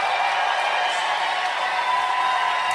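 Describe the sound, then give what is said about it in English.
Thunderous audience applause after a statement by the owner of the Miss Universe pageant, a dense, steady wash of many hands clapping that stays loud and unbroken throughout, with a faint murmur of crowd noise mixed in and no one speaking. “Thunderous applause there.”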